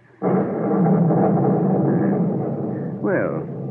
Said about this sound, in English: Well, the storm has renewed its fury, hasn't it?